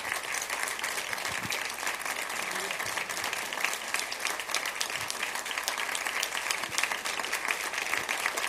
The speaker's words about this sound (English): Come on, give Jesus a hand clap.